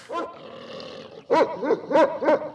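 dog barking

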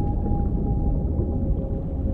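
whale vocalization

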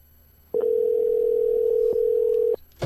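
phone call ringing tone

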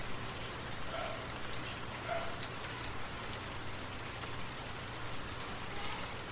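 rain falling

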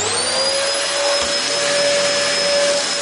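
vacuum cleaner running

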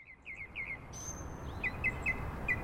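wetland birds calling

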